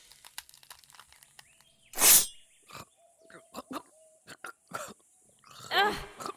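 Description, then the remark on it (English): A sharp, harsh cough bursts out as someone coughs in another person's face, followed a few seconds later by another rougher, rasping cough, with faint clicks and rustles in between and no speech. “Coughing in my face like that?”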